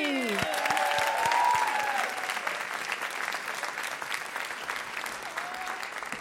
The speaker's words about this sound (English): Well done. That round of applause.